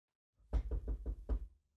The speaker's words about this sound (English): We'd all be just rolling up, getting out the car and just baseball bats in hand, knocking on the door.